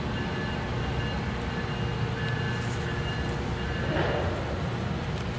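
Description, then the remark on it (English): A work train rolls along railroad tracks, giving a steady low rumble with rhythmic clatter and a faint metallic whine that holds at an even loudness throughout. “You got work trains coming through.”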